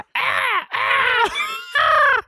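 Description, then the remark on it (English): A person imitates a raven's caw with three loud, harsh, drawn-out squawks in quick succession, strained and nasal, with short breaks between them. “That is not a raven sound.”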